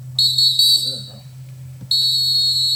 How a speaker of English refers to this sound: Big whistles.